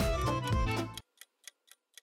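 timer ticking

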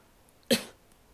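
coughing

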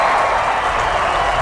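applause

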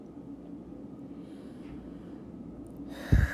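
deep breathing

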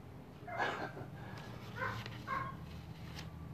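neighbor's dog barking

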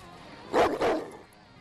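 dog barking

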